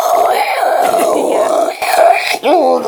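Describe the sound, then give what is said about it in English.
A voice imitates a 56K dial-up modem connecting: sustained warbling, wailing tones that waver up and down, ending in a sharp rising-and-falling squeal. “And if you're under the age of 20 and staring at the screen right now, it's because you've never used 56K dial-up, and that's you're awesome, so lucky.”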